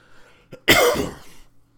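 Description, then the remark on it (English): A single harsh cough bursts out after a short intake of breath, loud and raspy, then fades quickly into near silence. “Come down with a cough, man.”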